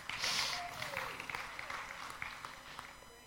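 A crowd at New Life gives a round of applause for a few seconds, a dense patter of many hands clapping at once, with a faint murmur of voices underneath.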